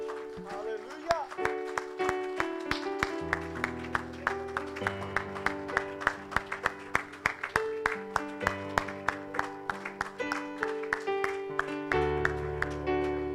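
An audience at a morning church service claps steadily in rhythm as praise to the Lord, sharp regular hand claps running the whole way through over sustained keyboard or organ chords and music.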